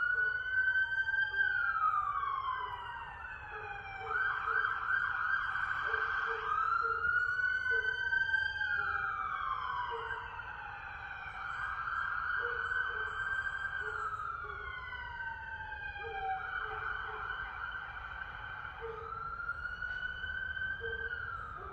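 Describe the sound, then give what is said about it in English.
Several sirens wail together outside, their pitches repeatedly swooping up and down in overlapping cycles, loud and steady throughout over a low background rumble, with no voices. “You hear the sirens, which is a representative of Archangel Michael and them.”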